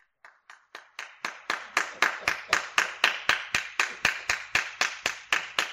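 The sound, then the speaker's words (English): One person claps steadily and evenly, doing the long "Jack Hiles clap", over twenty sharp claps in a row at a brisk, unchanging pace, starting soft and growing louder, with no voices. “They like that Jack Hiles clap that goes five.”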